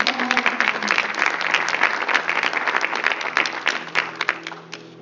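A crowd breaks into steady applause, many hands clapping in a dense, crackling wash that stays loud for several seconds before thinning out toward the end.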